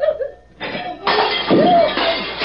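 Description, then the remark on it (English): Dishes slip from hands while being washed with slippery soap and crash and shatter in a loud, sustained burst of breaking crockery, with bright clattering and ringing fragments tumbling over a couple of seconds, preceded by a brief vocal exclamation. “Dishes are leaping out of my hands all by themselves. Well, what did you break?”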